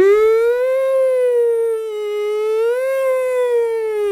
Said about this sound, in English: There we go, the boy's crying.